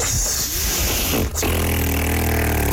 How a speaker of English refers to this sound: A fact about me that surprises people is that I don't know how to whistle. Yep, it mainly just sounds like.